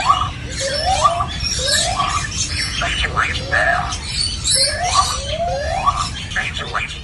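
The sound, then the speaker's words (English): A lyrebird at Taronga Zoo mimics an alarm with a steady series of rising, siren-like whoops, roughly one every second, mixed with chattering trills over a constant rushing background. “My friends, that is no alarm. It's a goddamn lyrebird.”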